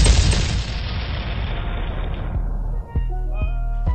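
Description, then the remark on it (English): A loud cannon blast booms at the start and rumbles away slowly, followed by three more sharp, evenly spaced reports near the end; cannons fired after a Tampa Bay touchdown. No voices are heard. “Fire the cannons.”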